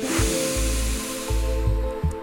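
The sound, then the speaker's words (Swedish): A long, deep breath drawn in during a breathing exercise, breathing in on a count of three, a steady airy hiss lasting a couple of seconds, with low rumbling puffs of air pulsing underneath and no talking. “Andas in på tre och ut på tre.”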